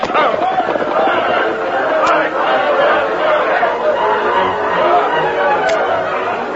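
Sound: crowd shouting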